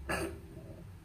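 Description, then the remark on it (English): A woman in a porn video gives a single short, gagging cough, fairly loud, caused by oral sex reaching too deep into her throat, followed by a faint low murmur of background noise. “And she made another coughing sound”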